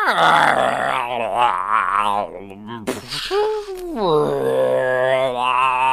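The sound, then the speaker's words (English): A human voice imitates a deep, rumbling roar-growl, sustained and loud for several seconds with a brief break in the middle before rising again. “You hear like a roaring, like a...”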